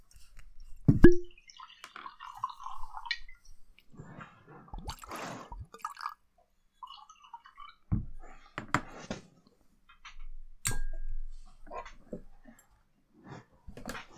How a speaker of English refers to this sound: Have you poured the scotch yet